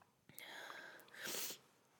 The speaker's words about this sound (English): gonna sneeze. Do you want a tissue?